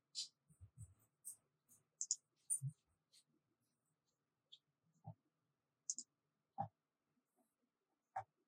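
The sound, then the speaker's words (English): A scattered series of quiet, sharp clicks from a computer mouse, coming irregularly one or two at a time with short silent gaps between them, with no talking. “My mouse clicked something odd.”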